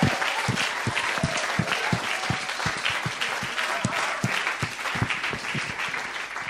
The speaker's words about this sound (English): Give these guys a round of applause to start with.